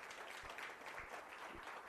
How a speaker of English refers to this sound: They are, yeah, you can clap. That's all right.